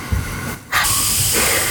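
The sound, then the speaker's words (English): A voice imitates the hiss of a poison spray spell projected from an open hand: two bursts of loud, breathy white noise separated by a brief gap, the second one longer and sustained. “You spray it out at them.”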